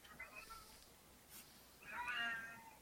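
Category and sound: animal, cat meowing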